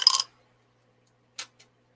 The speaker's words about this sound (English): I'm going to roll the six-sided dice that has a skull for the one. It's cooler. And then we're going to use this dice. And it is in a … dice shaker, by the way. So it's sanctioned.